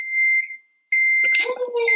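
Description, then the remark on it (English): A microwave beeps twice with long, steady, high-pitched tones separated by a short pause. People start talking over the end of the second beep. “Is that a microwave?”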